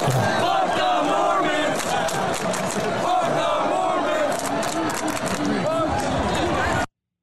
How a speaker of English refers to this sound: But you want to just play the sound from the crowd? This is the crowd at the BYU Oregon football game.